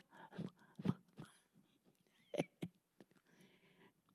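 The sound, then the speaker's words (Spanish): A person imitates a dog lapping water with a run of short, wet mouth smacks and slurps, irregularly spaced and fairly quiet, with no words spoken. “Y a quien vaya al río y lame como perro.”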